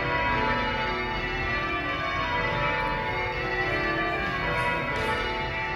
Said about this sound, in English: In Washington, D.C., one of the stops was at noon at the National Cathedral, where a society of bell ringers was performing. They ring the bells every Sunday, but one of them came down to speak with me while they were still ringing